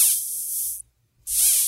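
Two short bursts of harsh, hissy buzzing from a caterpillar, bright and high-pitched, separated by a brief silence. Each burst is fairly loud, with no talking.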